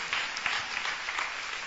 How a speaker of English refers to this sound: So when I see a church that doesn't clap their hands in excitement, I know you are not a proper Christian. Because I know, yeah. Clap for them, precious souls.